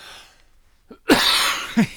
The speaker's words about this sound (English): I'm sorry. I was so dry, I just had to cough.